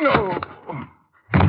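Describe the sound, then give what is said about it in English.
A dull, heavy blow as a man is slugged with a gun, with the man's strained grunt, then a brief quiet before another thudding impact. “Hey, you slugged him with the gun.”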